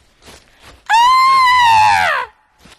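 A single loud, sustained scream rings out for over a second, high-pitched and strained, rising then falling slightly before cutting off, with faint background noise before and after.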